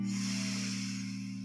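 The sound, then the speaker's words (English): A long, steady breath drawn in during a guided breathing and stretching exercise, an airy hiss lasting about a second and a half, heard over a low, sustained humming drone with no talking. “And on your next breath, breathing in.”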